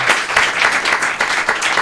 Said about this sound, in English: And the enthusiastic applause will be reflected in the tips for the waitstaff. That's a beautiful thing.